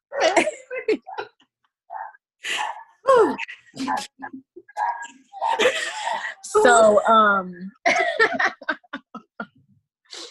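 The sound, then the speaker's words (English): Three dogs bark in a house: a string of short, sharp barks and yelps in irregular bursts, loud, with brief pauses between volleys. “So, there are 3 dogs in this house, y'all. So, I do apologize.”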